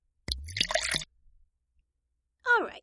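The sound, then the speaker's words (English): Brandy splashes and gurgles as it's poured into a glass, followed after a short pause by a second brief pour with a rising, filling tone. Fairly quiet, no talking. “Brandy. Pour yourself some as well.”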